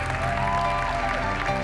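A church audience claps its hands in praise in a dense, steady wash of many overlapping claps, loud and continuous, with sustained musical tones holding underneath.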